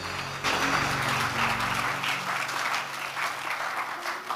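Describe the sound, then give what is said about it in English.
A church audience gives the Lord a clap offering during a prayer service, clapping together in a dense, steady burst of applause that stays loud throughout, with a low sustained organ-like tone fading out under it in the first half. “Give the Lord a clap offering somewhere.”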